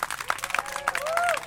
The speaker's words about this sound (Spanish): Que se oiga ese aplauso, pues.